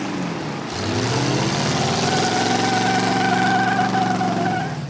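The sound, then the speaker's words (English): A supercharged car engine kicks in after a brief quiet moment and settles into a steady, loud idle, its deep rumble layered with a thin high whine. “eBay even has cars with supercharged ponies.”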